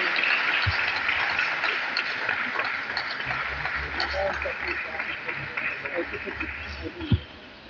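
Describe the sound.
A church audience gives a clap offering to welcome a woman reverend to minister, with sustained, dense clapping that stays steady and fairly loud throughout, with a murmur of voices and occasional sharper thumps mixed in.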